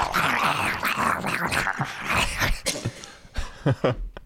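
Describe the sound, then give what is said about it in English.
A person growls like a dog, a sustained rough snarl for several seconds that breaks into a few shorter guttural bursts at the end, loud. “I just want to growl.”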